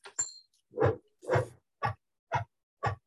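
A female dog barks about six times in a steady rhythm, short sharp woofs spaced roughly half a second apart, with a brief high squeak at the start.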